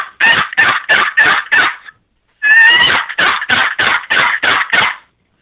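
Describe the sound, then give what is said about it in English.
A turkey call, demonstrated over a phone line, produces two runs of sharp, rhythmic yelps, about five notes, a short pause, then a longer string of around eight, loud with no talking. “Give her a little yelp.”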